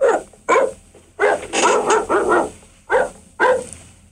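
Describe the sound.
A man imitates a dog barking into a microphone, voicing a series of about seven loud, sharp barks in an uneven rhythm, some single and some run together, with brief pauses between them.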